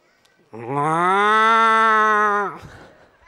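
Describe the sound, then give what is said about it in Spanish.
A person imitates a cow's moo with one long, loud, sustained lowing call lasting about two seconds, rising at the start and dropping off sharply at the end, with no talking. “Le reclamó Samuel: ¿Y cómo es que oigo mugidos de vaca?”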